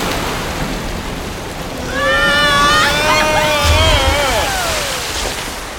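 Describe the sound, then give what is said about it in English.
A steady rush of flowing water fills the whole stretch, swelling louder midway as eerie warbling, whistle-like tones glide up and down over it for a couple of seconds. No one speaks. “Oh, we're being flushed out onto a current of known spider saliva.”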